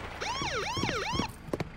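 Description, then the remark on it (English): A police siren wails in rapid rising and falling sweeps for about a second as police arrive, loud, then cuts off, followed by a few short thumps. “Now the cops are here.”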